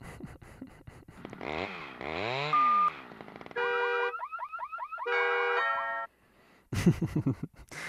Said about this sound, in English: Doorbell definitely fits in with the rest of those there as a huge emergency sound effect.